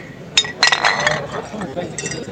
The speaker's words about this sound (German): Genau, ich würde sagen, auf den Schreck stoßen wir erstmal ganz kurz an. Prost.